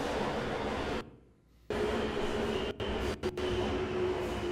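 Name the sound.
subway train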